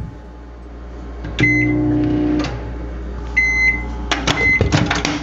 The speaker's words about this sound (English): Oh, all right, let me introduce you to the second problem with my microwave. The fucking button doesn't work. The open button? At least the open door button? If you push it on the right side, but if you push it on the left side, it sometimes works.